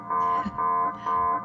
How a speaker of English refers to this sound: All right. I just wanted to play my fancy alarm. Does that work? I love the fancy alarm. Tick tock, tick tock. How long is there left? Because, by the way, your alarm is alarming.